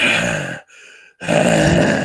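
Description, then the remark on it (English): A voice imitates heavy breathing right into the microphone: two loud, rushing breaths separated by a short pause, harsh and gusty with no words. “Why are you breathing into the microphone so hard?”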